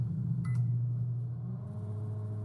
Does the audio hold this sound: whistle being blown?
no